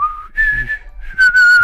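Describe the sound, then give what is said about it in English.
Someone imitates Osho's nose whistle, a 'booger whistle', producing three thin, reedy tones in close succession, the last one louder and longer, with no talking. “And I think that's really what soothed everybody into listening to Osho was that subtle booger whistle that he would always do.”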